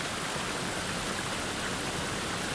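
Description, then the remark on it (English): A steady, dense rush of water falling at a waterfall, heard from a riverbank, fills the whole clip, a broad continuous roar with no pauses or other sounds breaking through. “So, you're standing on a riverbank, looking at a waterfall. The rush of water pushes all other sounds to the background.”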